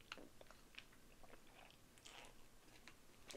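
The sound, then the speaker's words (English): Someone sips water, with a few short, wet mouth clicks and soft gulps spread over a few seconds against a quiet background, with no talking. “And I'm gonna take a sip of water because I'm thirsty.”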